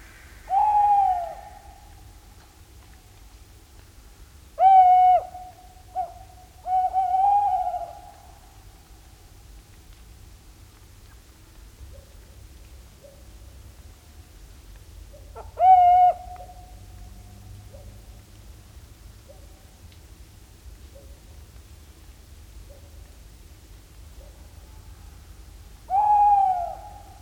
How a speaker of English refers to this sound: He captured these territorial calls of tawny owls on a foggy morning along the shore of Balham Lake in Northumberland, England.